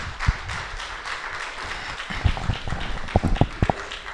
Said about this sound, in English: Amen. Clap your hands and give God some praise right there.